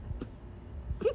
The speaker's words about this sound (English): Cornbread keeps sneezing. I don't know if you can hear that, but it's so cute.